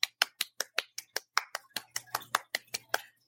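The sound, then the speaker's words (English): A rapid run of about seventeen sharp hand claps for Patreon supporters, evenly spaced, with a faint low hum underneath toward the end. “Hand clap.”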